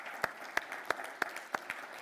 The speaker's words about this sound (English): Yeah, let's give another round of applause.